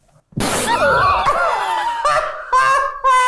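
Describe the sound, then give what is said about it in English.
A goose honks loudly, a long brassy call followed by several shorter, harsh honks in quick succession, with no talking over it. “Goose in the peanut gallery is so good.”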